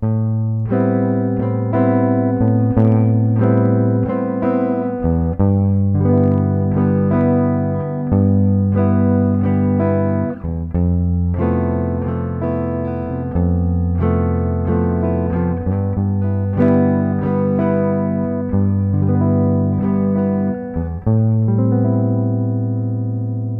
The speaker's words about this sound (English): Now, on the guitar, I will use 2 pedal tones, the first and second strings open. I will play A minor, G, and F, creating A minor 9, G 6, and F major 7 add 11.